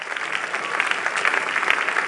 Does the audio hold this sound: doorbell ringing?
no